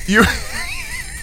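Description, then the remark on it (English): A voice imitates retching and dry heaving: a strained, gagging groan that wavers in pitch for about a second, then ends in a short, sharp cough-like burst. “You retch and retch and retch, and you're just dry heaving in front of this old woman for what seems like an eternity”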